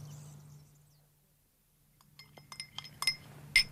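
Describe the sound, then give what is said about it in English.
Several bright glassy clinks ring out, a quick irregular cluster of chimes as a glass holding a drink is handed over and handled, over a low steady hum with no talking. “I can still hold a glass.”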